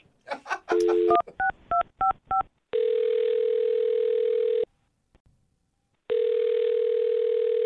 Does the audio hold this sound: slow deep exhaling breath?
no